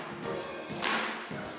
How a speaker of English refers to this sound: Now let's add the hand clapping.